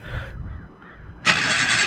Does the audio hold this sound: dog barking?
no